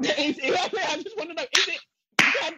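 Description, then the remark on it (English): A voice talks briefly, then a sharp, loud slap sound effect cracks out, followed by a short silence and a second crisp smack. “No, can ma'am. I slap you.”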